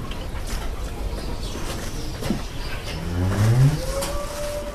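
A dairy cow, one of seven on a farm, lets out one drawn-out, rising moo partway through, over a steady outdoor background hum. A faint higher tone trails off as the call ends. No one speaks.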